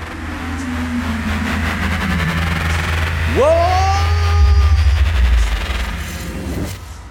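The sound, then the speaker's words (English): A train pulls away with a steady low rumble. Midway a harmonic whine sweeps sharply upward and then holds a level pitch for about a second before fading back into the drone. “The train's leaving.”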